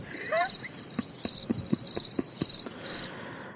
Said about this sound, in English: I finally have a cricket sound effect.